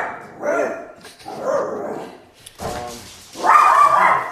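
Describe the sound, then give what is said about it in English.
Dogs bark loudly in a string of about four harsh, roughly evenly spaced barks, the final one longer and more drawn out. “Anti-marriage dogs, you know. Scared the crap out of me.”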